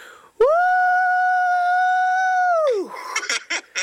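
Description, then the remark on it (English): An elephant trumpets once, loud, in a long steady brassy blare that sags downward in pitch at the end, followed by a few short noisy bursts. “That one gets a quick mad decent elephant because that was a twist.”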